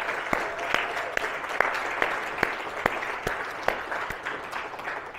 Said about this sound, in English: Let's just thank everyone who shared a report with a round of applause.